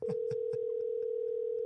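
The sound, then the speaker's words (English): A steady, unbroken telephone line tone hums throughout as a call rings before being forwarded, with a few quick rhythmic clicks near the start and no one speaking. “Call forwarded.”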